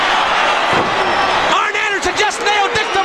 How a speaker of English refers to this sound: From behind with a steel chair. Nobody can get him.